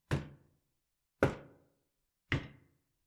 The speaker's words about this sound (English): Did you hear that? It can't be someone at the door. It can't. 3 knocks. It sounds so familiar. No one should be here. No one should be here in the middle of the night.